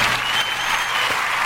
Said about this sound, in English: Do you hear the crowd going crazy? Oh, what is that? You got to listen close. Hold on.